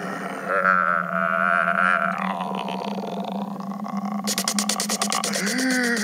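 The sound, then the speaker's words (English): A voice on a CD track of spooky sounds mimics a bat, starting with drawn-out, wavering vocal tones and breaking into a rapid, high-pitched fluttering chatter of clicks over the last couple of seconds. “I think that's a bat.”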